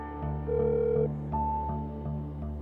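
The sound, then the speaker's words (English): Telephone tones from an outgoing call, two clear electronic beeps at different pitches, set against a steady, softly pulsing musical background. No one speaks. “I make the call, but the person who picks up the phone”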